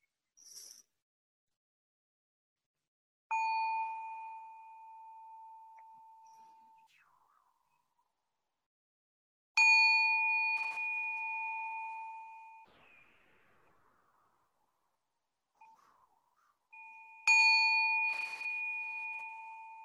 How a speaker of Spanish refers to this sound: Y abriendo los ojos relajadamente, calmadamente. Según escuchan el sonido de la campana. Sonido, sonido.